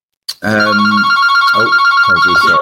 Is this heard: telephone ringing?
yes